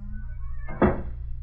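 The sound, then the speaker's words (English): A squeaky bedroom door opened by turning its knob: a thin, wavering creak rises over a low rumble, then a dull thump lands at the end, followed by a quieter hum. “Oh, it would be a squeaky door.”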